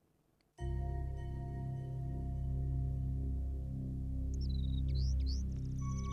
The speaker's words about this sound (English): Can a bird sing only the song it knows? Or can it learn a new song? Said the lovely, lonely Lady Vampire, running the elegant scalpel of her fingernail along the bars of the cage in which her pet bird sang.